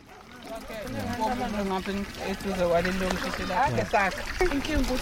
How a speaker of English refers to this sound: A group of women and young girls are filling up plastic containers with water. The water flows from a brand new standpipe sticking out of the ground in the province of KwaZulu-Natal.